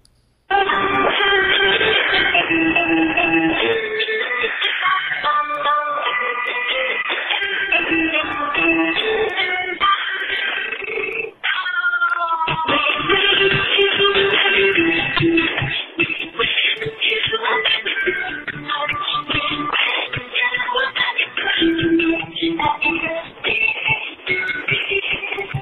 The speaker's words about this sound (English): I don't even know what that was, man. I don't know. What song was that? It sounded like a robot singing, "I wish you a Merry Christmas." It was Christmas music.